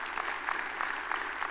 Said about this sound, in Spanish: Denle un aplauso al Señor, que Él se lo merece.